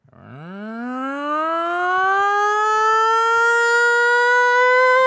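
A purge warning siren horn winds up from a low growl and rises into a loud, sustained wail, holding a steady pitch with rich harmonics for several seconds. No voices are heard.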